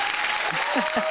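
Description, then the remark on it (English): A crowd applauding to welcome a female guest, dense steady clapping that fills the whole moment, with a few voices faintly audible underneath. “So let's give her a big round of applause for a fabulous freedom fighting and country loving data driven doctor.”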